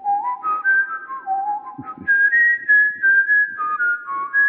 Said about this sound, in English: Where I gave you the whistle.